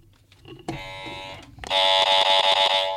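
A harsh, raspy game buzzer blares twice: a steady buzz of about a second, then a louder, longer one that stutters and pulses as the button is mashed repeatedly.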